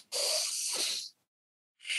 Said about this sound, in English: We're breathing now through our nose. Breathe in through your nose, deep in your tummy.